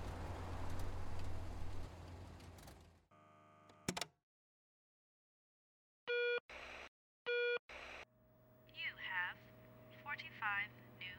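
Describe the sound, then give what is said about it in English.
A telephone call being placed: after some background rumble, a steady dial tone and a click, then pairs of electronic ringing bursts over the line, followed by a faint hum and chirpy noises. “Make your phone call”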